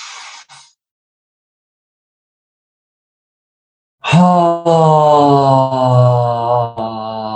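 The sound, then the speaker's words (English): During a guided breathing exercise, a brief airy breath is followed by a pause, then a long, loud, low voiced exhale, a sustained sighing groan that holds steady for several seconds. “Take a deep breath in. Let it go. Make a little bit of sound as you exhale.”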